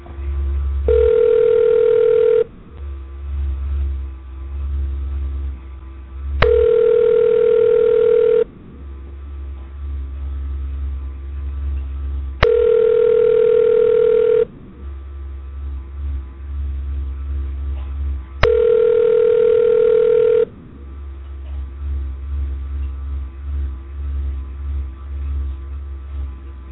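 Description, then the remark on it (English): A telephone ringback tone on an outgoing call repeats four times, each steady two-second ring followed by a roughly four-second pause, with a low hum and faint line noise underneath throughout. “We're gonna make a couple calls here and see what's going on.”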